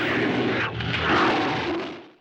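A huge, uncanny animal roar, made of a tiger growl played backwards blended with a lion roar played forward, both recorded at the Selig Zoo. It is loud, rough and sustained for about two seconds before tapering away.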